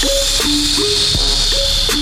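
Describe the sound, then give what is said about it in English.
A long, steady, elongated hissing S sound, used as a show's opening, runs unbroken through the whole clip, set against a low two-note tone that steps up and down, with a few sharp clicks. No one speaks. “What do you think about that elongated S, kind of a hissing sound? How do you like that for our open?”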